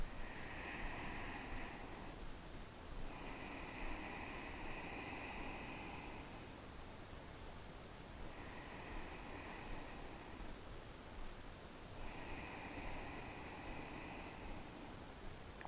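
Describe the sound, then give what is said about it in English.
Slow, hissing ujjayi breaths drawn in through the nose with the mouth closed and the larynx gently constricted, like a soft ocean wash, repeating in about four long, steady cycles with no talking. “So it's also called the ocean breath.”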